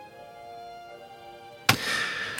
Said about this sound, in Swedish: Jag lägger det ett EMT också. Jag kan ta bort det. Lite torrare. Så tar jag tillbaka det. Så här låter det. Bara reverbet.